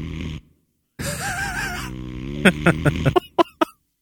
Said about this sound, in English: What was that noise? Is that just me? Snoring.